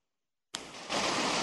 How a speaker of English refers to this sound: Like that background noise again. But then again, it is a little tiny waterfall, at least.